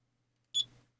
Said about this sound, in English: And that little beep you heard is because I forgot to start the timer. So my apologies on that.